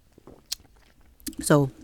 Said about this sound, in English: Let me take a sip for that.